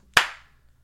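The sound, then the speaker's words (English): One sharp, loud hand clap from a single person, the kind that starts a slow clap, with a short ringing tail fading out and no voices around it. “Are you starting a slow clap, or was it a slow clap?”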